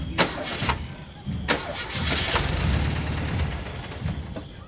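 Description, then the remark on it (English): The engine of a little yellow 'bug' car, parked among vendors' tents, cranks repeatedly without catching because its battery has no charge, a rhythmic grinding churn that sputters on and off for several seconds. “Not only are you surrounded by vendors, but your car ain't got no juice.”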